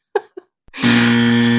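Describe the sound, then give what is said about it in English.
A couple of short throaty vocal bursts, then a loud, harsh game show buzzer blares and holds steady, droning on without a break until the end. “I can't, not even on my own episode can I escape the buzzer.”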